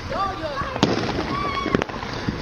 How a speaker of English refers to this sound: They're about to set off some bootleg fireworks.